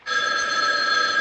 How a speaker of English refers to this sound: And he's like, boy, wouldn't you be surprised if that phone rang right now?